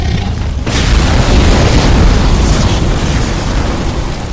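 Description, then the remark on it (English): After a brief quiet moment, the flapping of very large wings turns into a loud roaring whoosh of air that rumbles on steadily, a dense growling roar like metal on metal with a metallic grinding edge that barely fades. No one speaks. “Everyone hears a whoosh of air. And a roar like you've never heard before. Just, it sounds like metal on metal growling through the air.”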